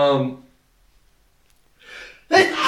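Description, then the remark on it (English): A single sneeze: a breathy intake builds into a sharp, loud burst at the end. It follows a brief voiced sound and a short silence. “Bless you. Next allergic to Star Wars.”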